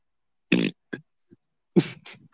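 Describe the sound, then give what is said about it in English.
A man tries to fart: a short, raspy fart-like sputter, then a few tiny pops and a second brief buzzy burst, fairly loud with silence between. “He tried to fart.”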